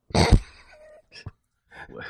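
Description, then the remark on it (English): A harsh cough from a cigar smoker bursts out loudly, followed by a brief throaty sound, a short second cough and then some breathy vocal noise. “Why is it every time you cough, it's a puff of black and brown fucking smoke?”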